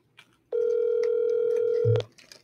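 A steady, loud telephone dial tone hums for about one and a half seconds, then cuts off with a short low blip, as if a key were pressed. No one speaks.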